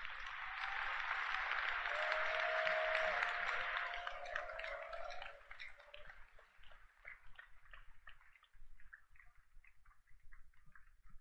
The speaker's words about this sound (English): So how many of us have accepted that we are going to plug ourselves into the anointing in the house? Clap your hands for the Lord.